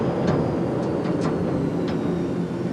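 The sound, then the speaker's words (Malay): A steady, loud low drone of an airplane cabin in flight as the plane descends toward Bali and Ngurah Rai International Airport, shaking slightly as it passes through white clouds, with constant engine rumble and a few faint clicks and rattles scattered through it, no voices. “Pesawat Anda semakin menurun dari ketinggian dengan sedikit goncangan karena menembus awan putih yang damai.”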